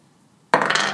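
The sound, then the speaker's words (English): A six-sided die clatters onto a surface after a quiet lead-in, with a sudden loud bright rattle of quick tumbling impacts that continues until the end, landing on a six. “I want to roll the dice.”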